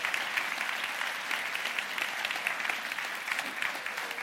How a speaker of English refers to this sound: If you would, if you're a father or grandfather, if you would, please stand and be honored at this time. If you would, give them a round of applause as they stand.